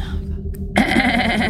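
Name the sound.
goat bleating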